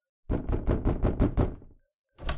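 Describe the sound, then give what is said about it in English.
A quick run of about seven firm, fairly loud knocks on a door, then a brief pause before another knock starts. No one speaks. “Martin, open the door. It's Helen.”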